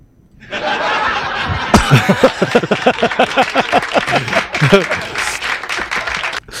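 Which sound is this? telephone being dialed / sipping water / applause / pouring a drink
applause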